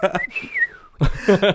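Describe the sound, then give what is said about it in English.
A thin, piercing high-pitched vocal squeal in whistle register glides and wavers for under a second, with brief talking just before it and voices resuming right after. “As you go into whistle tone.”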